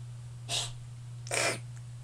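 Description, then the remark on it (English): A female cat makes two short, raspy dry hacking bursts, like coughing up a hairball, about a second apart. A steady low electrical hum continues underneath, and no one speaks. “Kitty, is it a hairball?”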